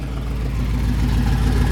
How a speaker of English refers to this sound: I'm getting moved out of the way here by this Bronco coming through with a massive V8.